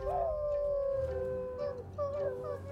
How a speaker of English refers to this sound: As night settled, a bright moon came out, and the night was shattered by the howling of wolves at the moon.